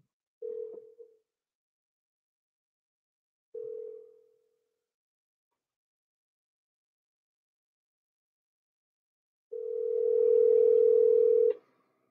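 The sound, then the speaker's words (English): A steady telephone dial tone sounds in bursts while calling a phone number that goes unanswered: two short tones a few seconds apart, then a longer, louder sustained tone after a pause. Nothing else is heard, and there is no talking. “Oh, man, I'm punching your phone number when I call. No answer.”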